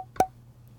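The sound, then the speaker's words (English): A drink can is cracked open: a single sharp snap of the tab with a brief metallic ring, then only a low steady hum. No one speaks. “We're popping bottles in the sense of opening cans.”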